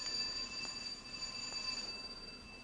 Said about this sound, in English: Then, one morning, my doorbell rang at an early hour.